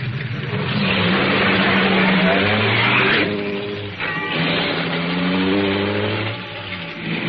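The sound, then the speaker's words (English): A car pulling back onto the road revs and accelerates loudly and steadily, its pitch climbing and dropping back in stages as it gathers speed, with road rumble underneath and no voices. “Once I got the car back on the road again, I felt like a fool.”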